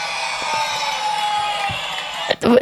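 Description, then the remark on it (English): A studio-audience booing sound effect: a steady, sustained crowd drone for about two seconds, ending in a short, louder burst of voices. “No, that's booing.”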